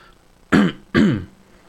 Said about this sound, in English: Sorry, I have a wild cough.